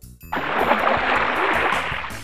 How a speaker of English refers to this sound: Rowing.